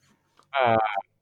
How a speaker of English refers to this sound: I didn't know you had a cat. I don't have a cat. That's probably just a TV. Oh, maybe there's some sort of, you know, kitty meow mix commercial.